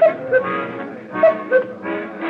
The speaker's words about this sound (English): I didn't need the silly cuckoo clock over the bar to tell me the passing of the minutes.